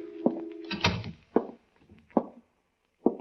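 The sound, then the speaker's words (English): The door of an insurance office in a two-story building creaks open with a dull clunk, then three slow, heavy footsteps thud across the floor as someone walks in, evenly spaced, with quiet between them. “I opened the door and walked in.”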